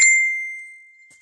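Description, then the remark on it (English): A single bright electronic phone notification ding for a confirmation code rings out clearly, then its pure tone fades away smoothly over about a second, with no voices present. “dinged me about this, notification code.”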